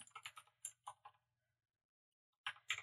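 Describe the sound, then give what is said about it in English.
A burst of quick typing on a computer keyboard with newly fitted keys that were not put in right, crisp clacky keystrokes in an irregular run, then a pause of about a second before a few more keys are struck, clear with no talking. “Don't mind me not being able to type. I got new keys for my keyboard, and I didn't put them in right, so I can't type.”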